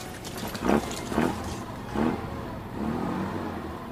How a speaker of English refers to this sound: Frank guided the truck over hill and dale, rock and flora, dirt and sand, urging the vehicle ever faster